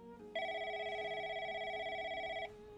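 telephone ringing

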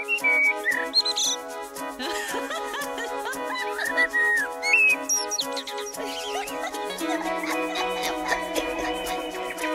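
birdsong

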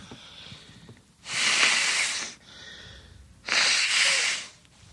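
nose blowing

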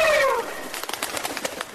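turkeys gobbling

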